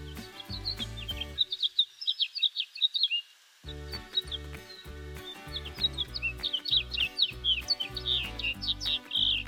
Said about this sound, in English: But really, it's about migration and mating at this time of year. Are the house finches going crazy where you are? It's insane here in Tucson.